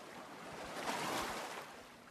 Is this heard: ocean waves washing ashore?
yes